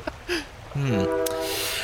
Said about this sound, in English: Oh, no, there it is! Hang on, the train! Hang on. Train near the water? That's not a good sign.